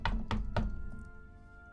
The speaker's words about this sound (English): you hear on your door a knocking.